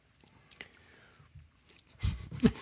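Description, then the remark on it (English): Wet sipping and slurping of bourbon, faint lip smacks and clicks at first, then a couple of louder, noisier slurps toward the end. “Listen to us sipping.”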